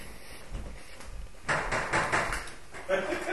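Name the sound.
door being opened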